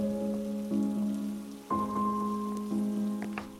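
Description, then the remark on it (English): Steady rain patters on a hard surface in a town, a continuous hiss of drops, with sustained low musical tones droning underneath that shift pitch a few times. “I'd been to at least 3 vendors so far, and none of them sold umbrellas. Shocking, really, for a town that rains this much.”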